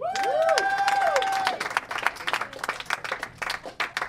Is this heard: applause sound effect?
yes